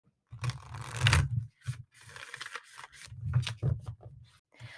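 A deck of totem cards being shuffled to draw a card for the day, several irregular bursts of crisp riffling and rustling with soft slaps between them, no voices.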